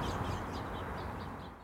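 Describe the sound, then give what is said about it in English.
Small songbirds chirp in a tree, a quick run of short, repeated high chirps at a moderate distance over a steady wash of low background noise. “I think there's some house sparrows up there as well.”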